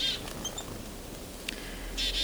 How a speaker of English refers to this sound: And I've got a bunch of chickadees worked up.